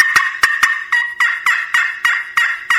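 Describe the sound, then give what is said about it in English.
A loud call of an excited turkey hen: sharp, abrupt clucks and cuts fired in a fast, uneven rhythm, about a dozen notes in quick succession, with no talking over it. “You know, when a hen's excited, she might, and you can, you know, put a little bit of inflection into that call, add some cutting.”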